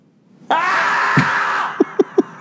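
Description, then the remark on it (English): A man's voice lets out a loud, drawn-out scream, dubbed in place of a beaver screaming on a mountaintop, followed by three short, sharp yelps in quick succession, alone. “It's a man voice over a beaver screaming in a mountaintop.”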